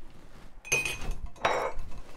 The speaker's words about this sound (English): Now you add ice and stir it really well. This is a stirred cocktail, not shaken. Still very noisy.